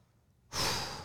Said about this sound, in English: It can't just be air. Stop that. I'm sorry. A lot of breathing.